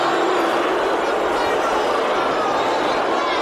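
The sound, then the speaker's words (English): A big crowd roars together in one loud, sustained wash of voices, holding steady without a break for the whole few seconds, with no single voice standing out. “A crowd. Yeah. Just a big crowd.”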